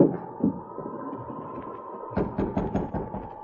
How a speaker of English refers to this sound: Come on, we'll go up and knock on the door.